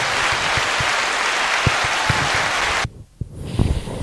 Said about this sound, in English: And then they all just look at each other. And then they all just start applauding. Well done, deity number 7.